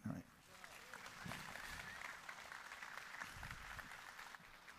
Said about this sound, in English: Big round of applause for those folks right there.